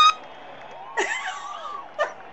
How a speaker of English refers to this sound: There's a gorgeous large diamond ring on the big screen. All the women in the crowd squeal.